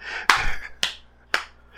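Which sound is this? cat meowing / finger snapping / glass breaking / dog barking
finger snapping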